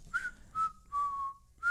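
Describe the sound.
A person whistles a short tune of four clear notes, one held longer with a slight downward glide, steady with no talking.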